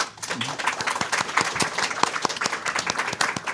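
An audience at the World Fantasy Convention applauds as guest Peter Straub is introduced, many hands clapping in a dense, crackling wash of sharp claps with no pauses, sustained at a moderate level throughout.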